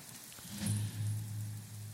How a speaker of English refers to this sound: Raining pretty good out here in the swamps.